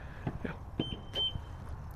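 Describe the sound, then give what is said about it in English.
A car alarm chirps with a few short, high-pitched electronic beeps in quick succession over a low background rumble, with no one talking. “Perfect, the car going off.”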